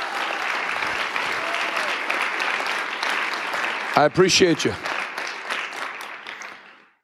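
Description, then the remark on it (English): Steady audience applause for the event's volunteer security team, many hands clapping in a dense continuous patter, with a man's voice briefly speaking over it midway before the clapping fades out at the end. “Give a hand clap to our friends.”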